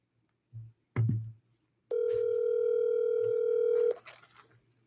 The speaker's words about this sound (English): So let's this time, whoever I'm calling, you're cold calling me. So when the phone ring, it's like you're calling me.